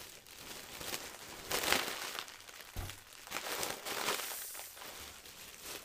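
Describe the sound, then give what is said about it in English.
Silver foil star balloons from a 30th birthday crinkle and rustle as they are handled, a steady run of bright, papery crackles with a few louder crunches, and no voices over it. “These silver stars are balloons from my 30th birthday.”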